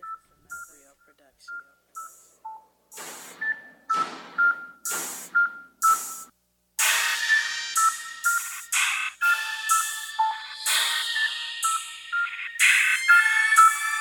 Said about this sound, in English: So check it out, y'all. We got our next beat coming up right now.